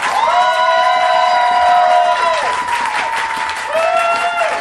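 An audience applauds loudly and steadily to pick a contestant as the night's winner, with long, high-pitched whoops and cheers rising over the clapping, one of them fading out and a new one starting at the end.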